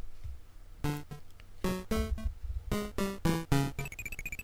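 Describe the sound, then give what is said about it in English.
Spooky graveyard theme video game music: a run of short, punchy staccato notes over low thumping beats, closing on a string of high, twinkling tones. No voices are heard. “Let's do the graveyard theme. I think this one's a little spookier.”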